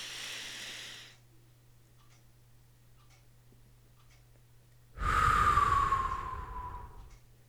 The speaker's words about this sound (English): So, you breathe in and you do this, the square breathing is actually really good. So, you breathe in.